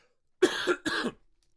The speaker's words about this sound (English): So, oh, my gosh. Ah, my coughing. This thing sucks.